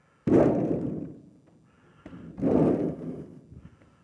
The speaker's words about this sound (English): I love holy sound effects, thunder, lightning.